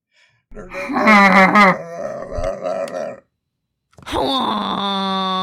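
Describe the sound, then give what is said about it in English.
People imitate reindeer with loud, drawn-out groaning yells, several voices overlapping in a wavering, honking chorus, then a brief silence before one more sustained, nasal bellow. “Everybody give me your best reindeer yell, just for me.”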